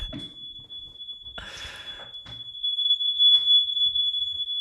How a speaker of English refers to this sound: Marnie set off the smoke alarm.